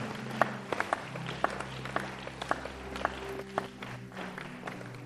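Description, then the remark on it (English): Scattered hand claps from a small group of audience members ring out irregularly, several sharp slaps spread across a few seconds over a low hum, rather than a full burst of applause. “Yes, if you are clapping your hands, please clap it well.”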